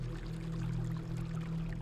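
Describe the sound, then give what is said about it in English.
Water ripples and burbles steadily like a stream in the woods, a continuous moderate wash of liquid sound with a low droning hum underneath and no voices. “The trail sneaks between the woods, and as I keep moving, I start to notice that the only sound I can hear is the rippling of the water.”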